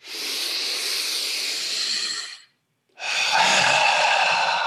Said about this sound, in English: And I want you to, when you breathe in through your nose, your belly should go out. So just think, okay, I'm going to breathe in through my nose. My belly goes. When I breathe out through my mouth, my belly goes.